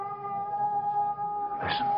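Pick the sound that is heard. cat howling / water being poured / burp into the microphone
cat howling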